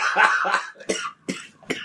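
A coughing fit close to the microphone: a rough, drawn-out burst followed by three sharp, separate coughs at steady intervals, loud and raspy with no talking.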